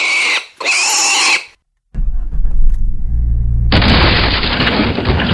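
Two loud, shrill pig squeals in quick succession, followed after a brief pause by a deep rumbling engine and then a harsh, steady rush of noise.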